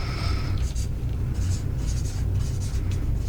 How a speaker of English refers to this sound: Okay, so you got to write it down on your piece of paper.